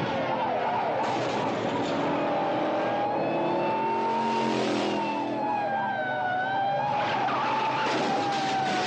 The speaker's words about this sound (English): The bumper comes off the car. They run into a cliff.